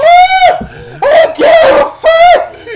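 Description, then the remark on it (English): A voice imitates the agonized screams of a man burning in a fire, letting out four loud, shrill, sustained wails in quick succession, strained, with brief breathy gaps between them. “The only thing that will reveal me is my scream.”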